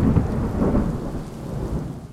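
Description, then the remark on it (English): A thunderstorm with deep, rumbling thunder rolling over steady rain, loud and continuous for a couple of seconds with no voices. “Wind can blow here for just a moment or two, like in that gentle breeze or during a thunderstorm.”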